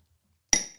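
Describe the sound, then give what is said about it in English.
A single sharp clink of shot glasses knocking together in a toast, bright, ringing briefly before fading, with a faint second tap right after. No talking over it. “you got a shot? What? We didn't start the show when you were 20. I got one ready. Sorry. All right. Cheers.”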